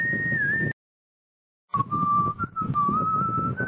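Audio generated from the text description "whistling with wind blowing": a steady, sustained whistle over a rushing wind noise, breaking off into a second of silence, then resuming with a slightly lower, wavering whistle above the gusty wind.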